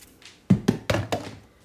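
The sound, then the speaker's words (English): Dice tumble and clatter across a hard surface in four quick hollow knocks, each a little softer than the last, before settling. No one speaks. “I got to roll the dice. Yep, roll the dice.”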